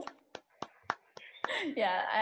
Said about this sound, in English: I need that clap. That's slow. Boom, boom, boom.